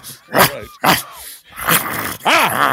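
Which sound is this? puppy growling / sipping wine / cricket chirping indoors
puppy growling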